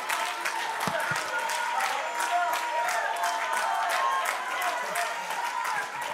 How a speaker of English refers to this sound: Somebody ought to dance to the Lord. Somebody ought to magnify the Lord. Clap your hands, oh ye people.